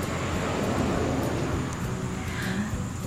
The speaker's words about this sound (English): Just a minute, a car is going by.